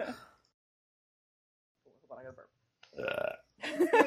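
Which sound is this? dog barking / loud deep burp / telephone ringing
loud deep burp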